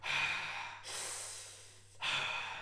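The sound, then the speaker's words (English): A voice imitates a heavy, mechanical villain's breathing to go with a 'Luke, I am your father' impression of James Earl Jones: a rasping inhale, then a long hissing exhale, then another harsh inhale, loud with no speech. “I'll do the breathing.”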